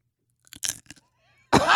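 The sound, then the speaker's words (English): A few crisp crunches of someone biting and chewing a hard almond, spaced over half a second, followed after a short pause by a loud burst of voice. “Wants to hear you chew.”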